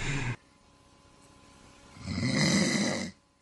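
Loud snoring: a short rasping snore cuts off, then after a quiet pause a longer, rough, rumbling snore swells for about a second before stopping. No talking.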